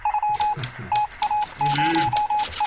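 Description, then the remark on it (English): A Morse code style sound effect: a steady mid-pitched beep keyed on and off in short and long pulses, mixed with clacking, typewriter-like mechanical taps and a few faint low tones underneath. “Yes, the Morse code section of the show.”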